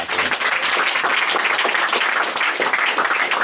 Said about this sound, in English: So with that, we're going to open it up for Q&A. But please give a round of applause for...